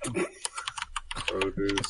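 Rapid clicking of keys on a computer keyboard as someone types random words, an irregular flurry of taps continuing for a couple of seconds, with a faint voice murmuring in the background.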